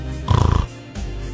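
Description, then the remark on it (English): A voice imitates a snore: one short, loud, rattling snort with a rapid buzzy flutter, lasting under half a second, followed by near quiet. “13% of couples who sleep in separate bedrooms do it for this reason. What is it? Snoring.”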